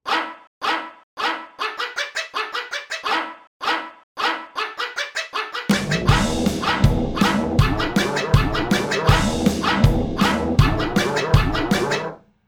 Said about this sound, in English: For number three, we're on familiar false instruments ground with good old dog, along with a drum kit.